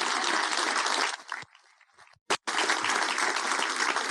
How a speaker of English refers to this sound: The data shows, yeah, there's an applause there. Yeah.